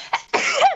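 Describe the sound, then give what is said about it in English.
A single loud sneeze: a brief sharp intake followed by a forceful burst that trails off, with no talking around it. “Bless you. Holy smokes.”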